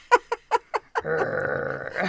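Dog noises: four quick, evenly spaced yips, then a longer sustained whining, growling sound that holds steady for about a second. No talking.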